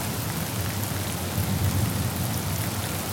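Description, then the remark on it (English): Steady, dense rain pours down continuously, a broad hiss with a low rumbling undertone, fairly loud, with no voices over it. “Rainy Days Special”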